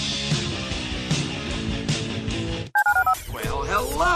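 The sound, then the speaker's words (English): Music plays, cuts off, and a quick run of about four telephone keypad dialing tones beeps out clearly as a phone is dialed, followed by a voice starting to talk. “To call into the HRNP listener line, dial 713-780-ESPN. Dial the phone.”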